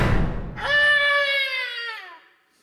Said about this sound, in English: You hear an explosion from the direction of the kitchen and screaming.